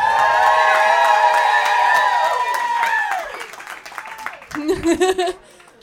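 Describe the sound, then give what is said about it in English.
A crowd cheers and hollers in a loud, sustained wave of voices as the audience votes on which comedian goes on to the next round, then it fades into a burst of scattered clapping before dying down. “clap your hands.”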